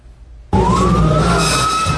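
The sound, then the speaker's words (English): An emergency vehicle siren, as first responders rush to a simulated train wreck in a railway emergency drill in Taiwan, blares in abruptly after a half-second of quiet, holding a loud, steady wailing tone with a slowly rising pitch over heavy engine rumble. “First responders rush to the scene.”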